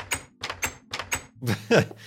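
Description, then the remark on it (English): A video game wooden door sound effect, repeated in quick succession: five short, evenly spaced clunks, then a louder, creakier swing and thud, all clear. “Maybe I even build a door. Probably build a door.”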